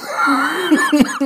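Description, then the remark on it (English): A loud cough right into the microphone: a strained, voiced throat sound breaks into several sharp, harsh bursts in quick succession, with no talking. “Ooh, cough right into the mic.”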